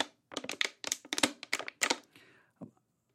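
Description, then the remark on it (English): A plastic water bottle being handled: a quick, irregular run of sharp crinkling crackles and taps for a couple of seconds, then one softer knock before silence. No voices. “Bottle of water. Sometimes I'll realize, I think there was a sound the microphone picked up, and I don't know what that, they're not going to know what that was.”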